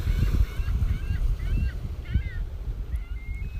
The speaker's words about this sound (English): I love it. Got the seagulls in the background.